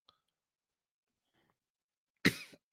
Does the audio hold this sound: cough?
yes